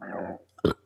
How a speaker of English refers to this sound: That was a throat burp followed by an expulsion.